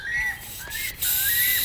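Clear whistling birdcalls repeat in three rising, sliding phrases over a steady background hiss, moderately loud, as the sky lightens at dawn over Endeavor Inlet, with no one talking.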